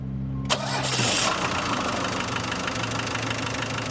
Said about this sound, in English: We're just filling up the Veggie Van with some biodiesel, which we made. And I've just got a little 12-volt pump here that I hook up to the engine and just sucks it right out of the jugs and right into the fuel tank.